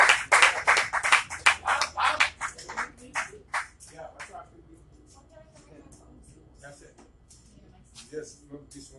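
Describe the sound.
A crowd bursts into loud, dense applause and cheering for several seconds, then the clapping thins out and fades as scattered voices and chatter take over.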